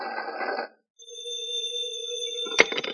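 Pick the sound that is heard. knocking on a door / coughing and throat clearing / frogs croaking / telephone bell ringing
telephone bell ringing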